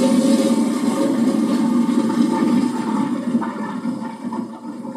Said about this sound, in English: Boy, that sounded like a double flush or a back flush. Sounds like my toilet problems.